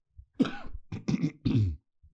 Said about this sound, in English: Don't worry about that cough. It's just coronavirus.